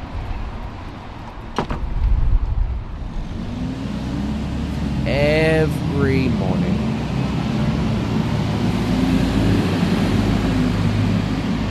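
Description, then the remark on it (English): Steady roar of busy morning street traffic on Broadway in Sydney's CBD at about 9:10 a.m., with cars, trucks, taxis and buses rumbling past, a brief squeal of brakes and a sharp clunk early on, while a person briefly speaks. “The loud, bombastic sounds of traffic, of cars, of trucks, of taxis, of buses zooming up and down this road.”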